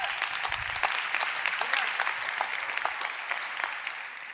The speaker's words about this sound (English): I appreciate you clapping, but some of you have no idea why you're clapping. Seems like the right time.